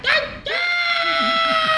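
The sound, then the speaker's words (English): A voice mimics a screaming bird from the Angry Birds movie with a loud, shrill screech: a short cry, then a longer sustained squawk, unaccompanied. “Are the birds actually going to talk, or are they just going to scream throughout the... like?”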